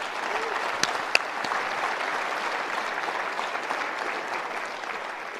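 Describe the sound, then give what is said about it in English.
A room full of people claps steadily for several seconds in thanks to two people, a dense, even wash of applause with a few sharper individual claps standing out near the start. “So can we give them a little?”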